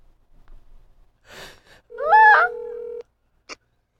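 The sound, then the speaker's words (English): A soft breathy rustle, then one loud, steady electronic keypad tone lasting about a second as a phone number is dialed, closed off by a brief faint blip. No one speaks. “Hold on, he has a very long phone number.”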